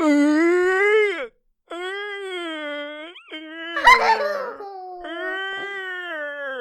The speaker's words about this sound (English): Recording an episode of the podcast all about yawning because yawning is contagious.